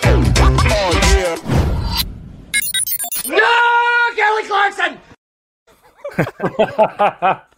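Loud, strained screaming and yelling in several rising bursts with high sustained wails, then a brief pause before more shouting whoops, from a person screaming along to a pop song.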